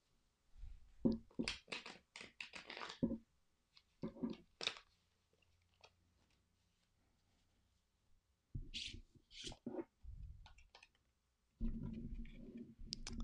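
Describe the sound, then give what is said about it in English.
Crisp papery riffling of a traditional Rider-Waite-Smith tarot deck being shuffled in several bursts separated by short pauses, ending with soft card handling as a card is drawn; no one speaks. “We are pulling a card from a traditional Rider-Waite-Smith deck, and we're going to shuffle the cards and draw.”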